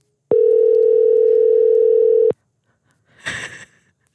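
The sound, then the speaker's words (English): A single long ringback tone on a phone line, steady and buzzy, lasting about two seconds before cutting off abruptly, followed by a short soft rustle of noise. “Oh, it's ringing. It's ringing.”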